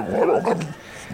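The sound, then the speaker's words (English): Basil, a boxer dog, lets out a single rough, growling bark lasting about half a second, mid-pitched and gravelly, then falls quiet with only faint background noise. “And the late, great Basil the Boxer, he's saying all this cat talk.”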